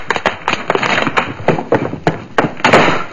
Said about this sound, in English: Spider just got through knocking the bottle of chemical serum to the floor.